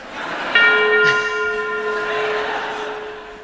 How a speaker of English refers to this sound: I insisted that the bell be replaced by Big Ben. So that you would feel comfortable.